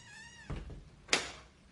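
A door gives a short, high squeal, then shuts with a low thud, followed about half a second later by a sharp, bright click. No one speaks.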